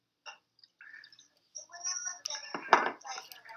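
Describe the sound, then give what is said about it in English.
Bottles of Maker's Mark and Jack Daniel's whiskey clinking together in a toast: a few bright, ringing clinks, with one sharper knock near the end, over a low murmur of voices in the background. “We just cheered our Maker's Mark and Jack Daniels for everyone at home.”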